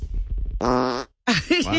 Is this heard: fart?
yes